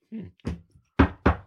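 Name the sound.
knocking on a door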